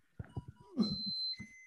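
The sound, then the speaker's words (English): High-pitched electronic beeping tones ring out, one held steady before shifting to a lower pitch, over a series of soft, muffled low thumps. “My baby's beeping a bunch.”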